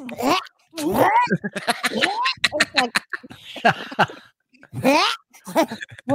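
A cat about to throw up retches and gags in a run of rhythmic, throaty hacking bursts, fairly loud, with short pauses between heaves.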